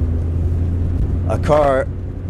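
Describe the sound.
A steady, droning rumble of a car moving at highway speed, heard from inside the vehicle, with a brief burst of a person's voice partway through.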